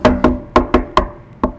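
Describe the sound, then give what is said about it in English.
A series of about seven sharp knocks on a hard surface, fairly loud, in an uneven rhythm with a brief pause before the last two, and no talking. “I gotta knock this.”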